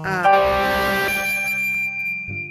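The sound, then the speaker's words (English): A phone notification chime rings out clearly with a bright, sustained tone that fades after a second or so, followed by a brief low murmur at the end. “Turn off my notifications when I'm recording.”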